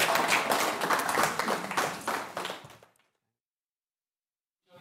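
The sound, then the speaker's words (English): An audience applauds with dense, steady clapping for a man invited up to the stage who recently turned 50. The clapping fills the first few seconds, then tapers off and fades into silence, with a faint new sound starting right at the end. “So massive round of applause to him.”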